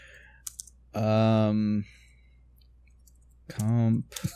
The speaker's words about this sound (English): So let me just make this note real quick. Da da da da. Behind the curtains, typing stuff.